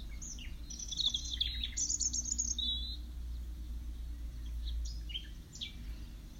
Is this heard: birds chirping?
yes